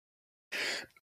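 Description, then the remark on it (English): A single sharp cough bursts out of silence, a harsh, breathy rasp lasting about a third of a second, trailing into a faint, brief catch of breath at the end. “But if you hear me coughing, I don't have COVID.”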